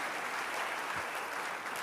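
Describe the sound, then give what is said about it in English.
Steady, dense applause from a crowd, a continuous wash of many hands clapping at an even loudness with no voices standing out. “You're clapping and sick in the house right now.”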